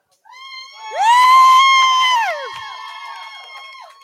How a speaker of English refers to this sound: So when these three guys get up there and you're gonna cheer for them, we need boobies too. So the louder you cheer, the more boobies we should see. So let's try this one more time. So when the guys get up there, we're going to cheer, right?